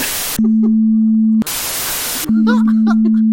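Two loud bursts of harsh white noise hiss, each under a second, alternating with a steady low electronic tone while faint voices murmur beneath it.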